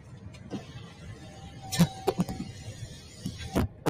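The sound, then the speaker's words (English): Steady low rumble of a car interior with scattered sharp clicks and knocks, a few louder thumps standing out over the quiet engine hum; no one speaks. “We're in the car.”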